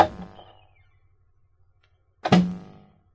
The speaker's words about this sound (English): I locked the door.